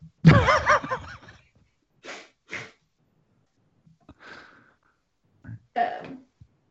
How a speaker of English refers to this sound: And with another cough, you hear the captain all of a sudden wheeze with a big gasp.